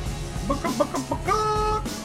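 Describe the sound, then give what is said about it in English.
A voice imitates a turkey for Thanksgiving, a quick run of short clucking bursts that rises into a sustained, crowing warble, fairly loud, with no other talking. “You got something turkey related for everybody”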